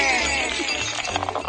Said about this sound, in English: And the glass, it's not ice. I don't know why we call it icebreaker. It's glass break.